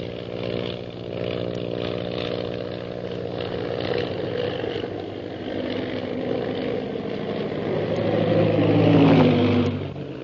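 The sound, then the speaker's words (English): A steady, buzzing propeller-engine drone with layered harmonics from Shanghai Lil's plane holds for several seconds, then swells louder as its pitch bends and whines upward while the plane rocks, goes into a spin and drops swiftly toward the ocean. No voices. “Suddenly, Shanghai Lil's plane rocks crazily and goes into a spin, dropping swiftly toward the ocean below.”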